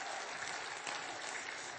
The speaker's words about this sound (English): We'll give the Lord one more good hand clap, would you please?